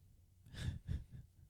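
Quiet snoring: two breathy, rumbling snores in quick succession, soft and close, with no talking around them.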